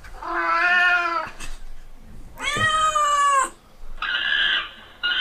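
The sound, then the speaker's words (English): Several cats meow and yowl in long, drawn-out cries, three loud wailing calls in a row with brief gaps, with no one talking. “Oh, there's a third cat. This is a mess.”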